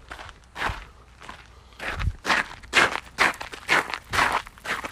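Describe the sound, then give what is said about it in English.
Shuffling footsteps scrape and drag across the ground, about nine scuffing steps in an uneven rhythm, with a couple of duller thuds mixed in. No voices, just the steady scuffing. “I forgot how to pick up my feet when I walk.”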